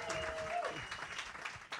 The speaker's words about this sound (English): Let's give Renee a round of applause as she counts the votes.